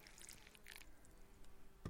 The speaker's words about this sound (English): I'm going to pour my coffee.